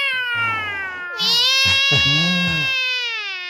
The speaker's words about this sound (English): Look at the dude. Look at the cats, bro. Cats is going at it.